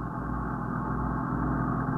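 A police patrol car engine hums steadily at a low, even pitch as the car cruises south on Lexington Avenue in the 70s, continuous for the whole stretch with no voices or sharp changes in speed.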